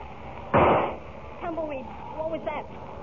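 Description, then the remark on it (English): A single sharp gunshot, fired at Lightning so he would not freeze to death, cracks out and decays quickly, followed by a few faint, wavering voice-like tones. “I heard a shot, Tumbleweed.”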